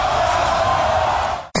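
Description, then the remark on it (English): A loud, roaring wrestling arena crowd at a free pay-per-view event reacts with sustained cheers and shouts as Hollywood Hogan attacks Leno and Kevin Eubanks, a dense wall of voices that holds steady before cutting off abruptly near the end. “Now, if you pay attention to the crowd, they actually got into this shit.”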